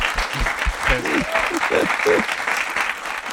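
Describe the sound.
Steady applause from an audience fills the room, many hands clapping in a dense, continuous wash, with some voices calling out and cheering over it.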